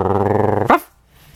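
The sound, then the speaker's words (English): An angry dog gives a sustained, tonal snarling growl, then lets out a sharp bark, with another bark starting right at the end. It is loud, with no talking. “Oh, that's an angry dog.”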